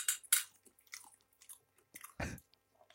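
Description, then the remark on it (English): Wet chewing of food with several crunchy bites and smacking mouth sounds in an irregular rhythm, fairly loud, with no talking. “I'll just chew to keep, like, the government happy or whatever.”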